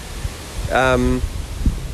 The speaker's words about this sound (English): Blimey, it's windy.